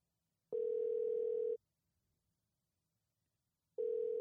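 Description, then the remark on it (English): A telephone ringback tone on an outgoing call back to a garage door repair company's number: a steady, mid-pitched electronic tone lasting about a second, then a pause of over two seconds before the next ring begins. No one speaks. “So, I'm going to play, we called back the number. Just to make sure. So I'm going to play that now.”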